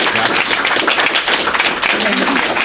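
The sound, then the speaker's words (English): An audience applauds the panelists at the end of a panel discussion, before a Q&A, many hands clapping in a dense, steady crackle that holds at an even loudness throughout, with faint voices mixed in beneath the clapping. “And if everyone could give them a round of applause, that'd be great.”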